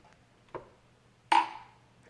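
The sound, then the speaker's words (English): Glasses of gin drinks clink together in a toast right into the microphone: a soft first tap, then a louder clink that rings out in a bright, sustained tone and slowly fades. No one speaks. “We're gonna cheers again right into the mic.”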